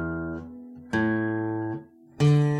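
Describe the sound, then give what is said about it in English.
Three plucked guitar open strings ring out one after another as each open string is checked for fret buzz, in midsummer in South Georgia; each note sustains with rich harmonics, one carrying a faint fret buzz; no voices. “That one, I hear a little buzz there.”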